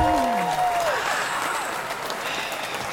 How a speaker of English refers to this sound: Can I get some applause up in here? Woo, woo, woo!